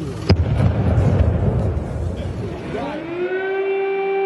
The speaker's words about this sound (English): Loud explosions have been now heard in Ukraine in lots of different cities as the Russian assault has begun.